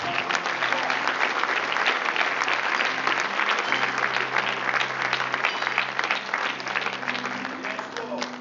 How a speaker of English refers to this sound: Clap for God.